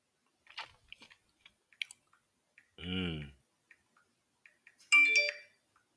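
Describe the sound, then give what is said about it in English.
Scattered, irregular clicks of typing on a keyboard, fairly soft and close, broken up by a loud buzzing electronic tone midway and a bright chime near the end. “I'm typing.”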